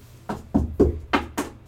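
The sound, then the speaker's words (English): A voice imitates knocking on the front of a house: five dull, hollow thumps in an uneven rhythm, fairly loud and separated by brief pauses, with no talking. “And then it sounded like somebody was, like, knocking on the front of the house.”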